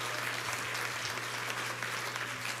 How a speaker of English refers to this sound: Why don't you clap your hands unto the Lord and magnify the name of the Lord?